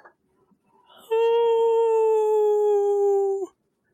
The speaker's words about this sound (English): You now find yourselves completely enveloped in this dark mist. A howl in the background.